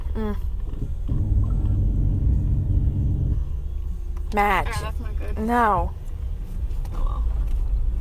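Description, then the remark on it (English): Car brakes creak twice in short, wavering squeals over a steady low engine rumble, with people talking inside the vehicle. “Mom, your brakes. Listen.”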